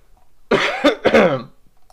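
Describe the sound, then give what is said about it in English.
A loud cough from something in the throat, two harsh bursts in quick succession with a rough, throaty edge, heard on its own against a quiet background. “No, sorry, I was trying to mute my mic so I could cough because there's something in my throat, but we're good.”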